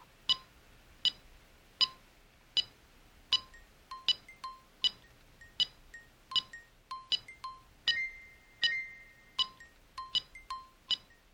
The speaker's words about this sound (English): We've got a metronome here, which is ticking away at 80 beats to the minute. And you can hear, actually, if I hold it up to the microphone, that it actually is quite a steady speed.